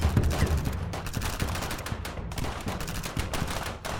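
A sustained volley of gunfire from many police officers firing high-powered weapons, dense overlapping sharp cracks firing in rapid, irregular bursts across the whole span, loud and without pause.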